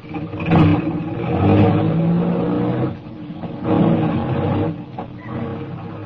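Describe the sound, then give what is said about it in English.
A car engine runs loud, its low growl swelling and easing in surges as if accelerating and shifting, with no voices over it. “We drove for about 20 minutes, and we stopped at a garage, a big garage, four stories high, with elevators for parking cars on different levels.”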